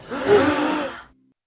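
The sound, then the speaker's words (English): A single voice imitates a crowd's gasp with a breathy, drawn-out intake that swells and fades over about a second, followed by silence. “Crowd's gonna gasp.”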